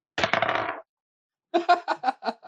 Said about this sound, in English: Here. Can you hear my metal dice clank across my metal ring as I hold it in my hand? I mean, yeah, but it really just sounds like something else, so maybe don't do that.